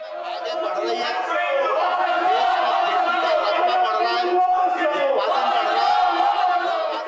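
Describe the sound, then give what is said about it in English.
Protesting opposition members in the well of the Rajya Sabha shout slogans over one another in a continuous, loud din of overlapping raised voices that stays steady for several seconds without any break. “After that, we saw what the protest members coming to the well, shouting slogans.”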